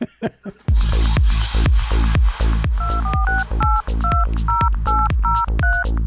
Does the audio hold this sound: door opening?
no